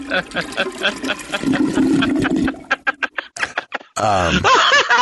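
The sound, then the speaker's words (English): A toilet flushes with a loud rush of water for a couple of seconds, then gives way to short bursts of snickering and a sweeping, warbling voice-like sound at the end. “One more flush.”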